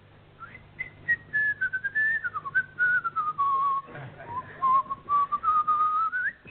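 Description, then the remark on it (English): A person whistles a secret tune, identified as the Hungarian Rhapsody, alone, a single clear tone gliding up and down through connected phrases for several seconds, fairly loud. “By whistling a highly skilled, mysterious secret tune.”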